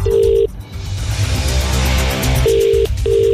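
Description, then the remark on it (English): An outgoing call's ringback tone, placed to someone who had just texted, purrs in a double-ring pattern, a steady electronic tone that cuts out and returns, with the low rumble of a car engine underneath and nobody picking up. “What, you just texted and you don't answer your phone?”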